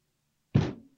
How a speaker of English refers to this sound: Sorry, I'm banging the desk because I'm mad at Bill Gates and the Skype connection.